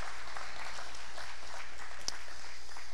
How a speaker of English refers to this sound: let's give Chuck a round of applause and thank him for his work and his faithfulness